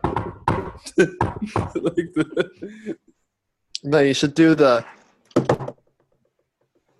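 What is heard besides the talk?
knocking on a door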